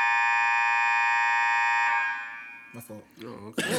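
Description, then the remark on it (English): A loud, harsh Amber Alert emergency tone from a phone blares steadily for about two seconds, then fades out as people begin talking over its tail. “Amber Alert, nigga.”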